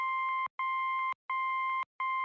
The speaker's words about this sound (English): Well, you kind of need to hear the dot. So every time you hear that beeping sound, it's me holding down the space bar. So the objective of the game is to move the helicopter to the grid cell based on the Morse code on the left.